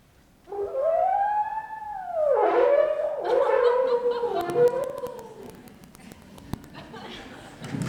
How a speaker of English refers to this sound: The bull turned and looked my direction, then sounded his own reply.